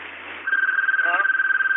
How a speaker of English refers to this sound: One of those calls that I don't care to answer, so we'll just let the phone ring and maybe they'll give up.